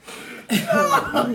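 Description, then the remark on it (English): A short, sneeze-like cough bursts out after a brief hush, trailing into a rough, breathy voiced sound. “That little sneeze cough shit.”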